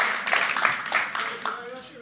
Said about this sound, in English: Four people applauded, by the way.